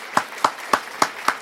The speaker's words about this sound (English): So on that note, ladies and gentlemen, she deserves some applause for that.